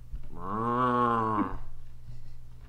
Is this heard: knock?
no